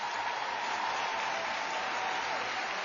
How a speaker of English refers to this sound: How about another big round of applause for Burton High School Touch of Class?